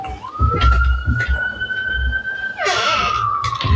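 An emergency siren in New York City wails steadily: one long tone that rises, then holds a high pitch for several seconds, over a low street rumble with a brief clatter partway through.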